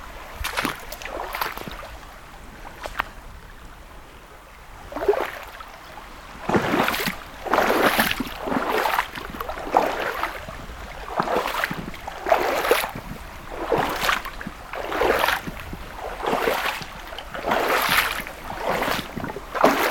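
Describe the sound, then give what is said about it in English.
Rhythmic splashing of water as someone wades across a river, with repeated surges roughly every second or so, over a steady background of flowing water and light wind. “Now to cross the river again.”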